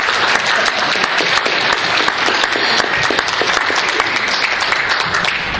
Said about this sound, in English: A beautiful wife who's here with me tonight. You better clap for her.